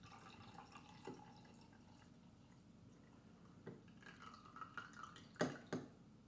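Coffee pours quietly from a French press in a soft, steady trickle, broken by a few sharp clinks of glass and ceramic near the end. No one speaks.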